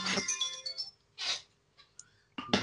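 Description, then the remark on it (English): A phone alarm, set as a reminder to take medication, rings with a bright electronic tone in short repeated bursts that start and stop. The tone is clear, with no talking over it. “It's my alarm telling me to take my medication.”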